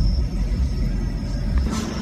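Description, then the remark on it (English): A car engine idles with a steady low rumble that holds evenly throughout while the car waits in a drive-thru, with no one speaking over it. “They're in their car in the drive-thru, obviously.”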